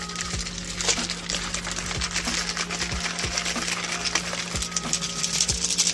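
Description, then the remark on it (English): A small drink mixer whirs steadily with a constant low hum and occasional knocking thumps as it runs, mixing Dubby Energy Dragonade drink powder with water. No one speaks. “We got a little mixer here, getting ready to roll.”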